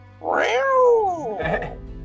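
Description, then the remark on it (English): A person imitates a cat with one long, drawn-out meow that rises and falls, followed by a shorter, rougher mew. Fairly loud, with no other talking. “It's a cat, Cheshire.”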